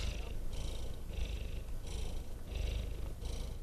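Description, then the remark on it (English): A female domestic cat purrs into the microphone, a steady low rumble with breathy rises that pulse about once a second as it breathes in and out, with no voices. “She was purring into the microphone.”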